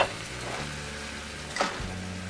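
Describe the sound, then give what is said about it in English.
Meatballs sizzle steadily in a hot pan on medium-high heat beside seared chicken breast, a dense crackling hiss throughout, with a brief louder burst of spattering partway as more are added, plus a low steady hum underneath; no one speaks. “I've seared my chicken breast, push it to a side, and now I'm going to add my meatballs.”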